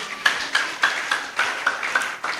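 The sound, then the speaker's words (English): A church audience claps hands together for Jesus in a steady, fairly quick rhythm, the many overlapping claps merging into a full, continuous patter of even beats with no voices. “Can we clap our hands together for Jesus?”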